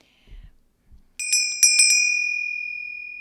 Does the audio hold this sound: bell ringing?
yes